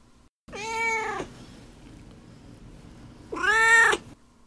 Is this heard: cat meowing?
yes